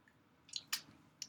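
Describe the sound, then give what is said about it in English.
A quick sip of Bud Light beer from an electric blue bottle: a few soft, wet mouth clicks and a brief slurp, fairly quiet, with no talking. “So let's take a sip. Get a little taste test.”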